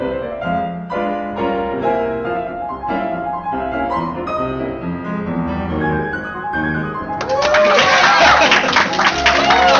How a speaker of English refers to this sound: Applause sign. Okay, thank you. And thank you, and welcome to the very first live Wages of Cinema presentation.